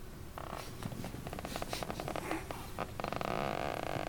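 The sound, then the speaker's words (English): A chair creaks and groans for several seconds in a rough, rasping grind that swells unevenly and grows louder and steadier near the end, with no one speaking. “That fucking chair.”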